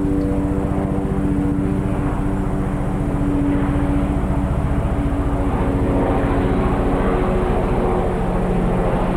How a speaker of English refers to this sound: Will you piss off, helicopter?